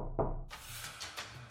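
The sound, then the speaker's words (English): A single soft, muffled, stealthy knock on the front door of a house, quiet, followed by faint rustling and hiss with no voices. “And at the same moment, a knock, so quiet and stealthy as to be scarcely audible, sounded on the front door.”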